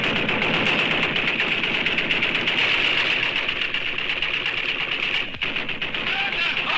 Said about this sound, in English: He says listeners cherished the show's signature opening. Which featured, the AK-47 gunfire, the sound of an AK-47.